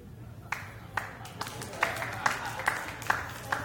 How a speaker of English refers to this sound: See, this is smattering. It's golf applause.